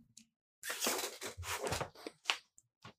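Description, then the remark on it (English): Someone crunches one generic Tums chewable antacid tablet, a burst of loud, gritty, irregular crackling that breaks into a few shorter crunches as the chewing slows. No one speaks. “No, no, you got to hear, you got to be with me crunching this fucking Tums right now.”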